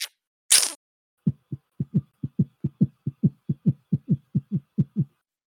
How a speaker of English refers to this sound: His heartbeat is fast as you bite down.